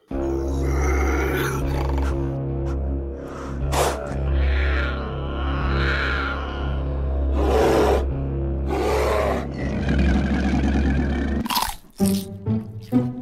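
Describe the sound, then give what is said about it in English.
Loud munching and crunching chewing noises, with sharp crunches every few seconds over a steady low rumbling growl, ending in a quick flurry of crunchy bites. “Munch, munch, crunch, crunch.”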